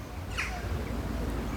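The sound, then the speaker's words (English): At a duck pond, a single short, harsh bird call, somewhat crow-like, rings out once near the start over a steady low outdoor rumble, then only the ambient background continues. “Don't miss a single duck noise or a single bird singing.”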